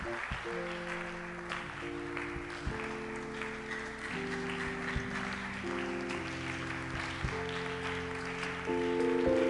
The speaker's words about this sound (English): Keep clapping. Keep clapping.